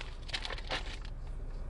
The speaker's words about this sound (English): Sorry, you're just going to have to hear me chewing on some ooey gooey sweetness. I got Laffy Taffy Laugh Bites.